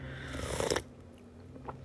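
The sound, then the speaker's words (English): A pet named Milo lets out a breathy, rasping yawn lasting under a second, with a low humming tone underneath, followed by near-silence and a faint brief rustle. “Is that you yawning?”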